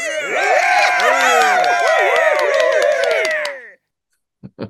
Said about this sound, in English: And man, oh man, if I could cue the cheers and applause right now, I will.